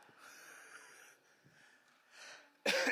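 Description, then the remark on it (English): A sudden, loud, harsh cough from a speaker with sinus and chest trouble bursts out near the end, during a spoken message, after a stretch of quiet, raspy breathing and faint throat noises. “But you'll have to pardon me. I don't have a cough button up here either, so I can't”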